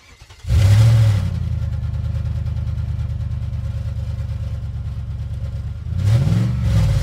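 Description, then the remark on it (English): A car engine turns over and roars into life with a loud rev, settles into a steady rumbling idle, then revs up hard again near the end, without any talking. “And that is the engine, of course, of the Limerick naysayers starting up and getting ready ahead of the weekend.”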